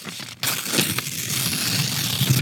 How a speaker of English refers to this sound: I'm tearing up paper. I'm the speaker.